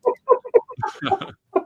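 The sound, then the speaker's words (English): A voice imitates a rooster, with three short clucking bursts followed by a longer, strained crow and one final cluck, fairly loud. “I'll do some more. Red Rooster for you guys.”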